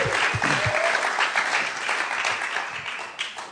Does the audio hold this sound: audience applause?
yes